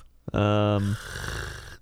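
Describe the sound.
A single loud, buzzing snore-like sound made with the voice, lasting under a second, then trailing off into a breathy, raspy exhale.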